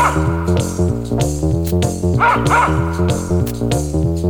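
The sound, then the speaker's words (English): A dog barks and yips in quick, excited bursts over a steady, rhythmic musical backing, the sharper yelps standing out near the middle, with no one talking. “Unless you were a dog.”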